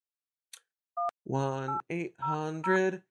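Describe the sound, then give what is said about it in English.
A single short phone keypad tone beeps once, clear, as a phone number is dialed, followed by a voice making drawn-out, tonal vocal sounds. “Okay, I'm calling her.”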